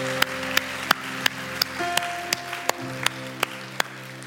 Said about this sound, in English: Can we give these four individuals that raised their hands a huge round of applause? Yeah, Foundation Church, what an awesome moment.